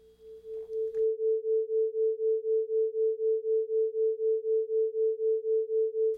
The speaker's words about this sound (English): See? Or, I guess, hear? It's weird, right? It's not quite right to say that the interference, the beating created by the interaction between those two frequencies, isn't really there, because you can hear it, clear as day.